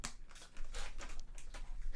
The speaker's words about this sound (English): I'm not about to eat a bag of chips. I just want everyone to know I'm giving Buttercup a treat. I just don't want anyone to hear that rustling of a bag.